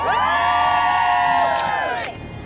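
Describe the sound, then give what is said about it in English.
A crowd of people outside a morning show in New York at Christmastime cheers loudly, many overlapping voices whooping and shouting together in a sustained high-pitched roar that suddenly drops off near the end. “Hey, that's just us getting started on that crowd.”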